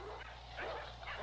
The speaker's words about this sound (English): Whoa! Stop, you crazy dogs! Unmush, will ya?